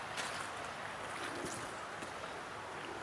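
river water flowing

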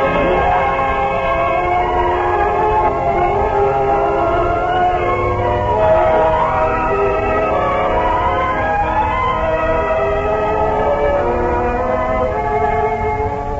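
train running on rails

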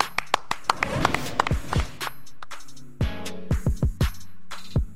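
clapping

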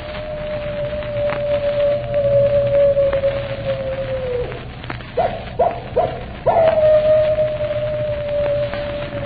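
animal howling

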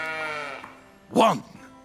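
sheep bleating

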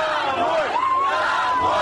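protest crowd chanting

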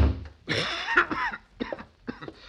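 coughing

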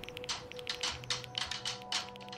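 typing on computer keyboards

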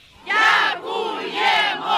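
crowd cheering in celebration

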